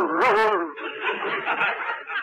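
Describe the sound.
A man imitates a dog, giving a brief voiced yelp and then a rough, throaty growl that rasps on for about two seconds, fairly loud, with no words.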